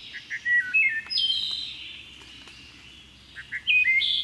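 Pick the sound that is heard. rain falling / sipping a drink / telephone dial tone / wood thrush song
wood thrush song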